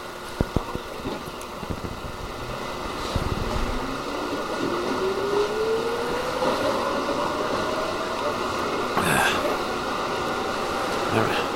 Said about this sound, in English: Let's just take the subway. Yeah, let's just hop on the subway for a moment here and... Oh, it's arrived. Let's get on the subway, yeah.